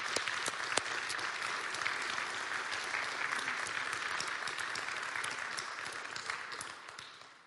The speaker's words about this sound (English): But if we could recognize our medical workers and give them a round of applause this morning.